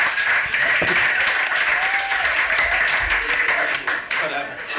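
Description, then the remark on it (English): Steady crowd applause at a stand-up comedy show, welcoming the second-to-last act onto the stage: a dense, bright wash of many hands clapping at an even loudness, with faint cheers and voices mixed underneath. “I give them a big warm welcome because they've waited all night to get up on this stage and do their time.”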